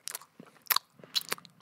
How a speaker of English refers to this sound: The audio people only heard us eat Reese's. They had to listen to us smacking our lips eating Reese's Peanut Butter Cups.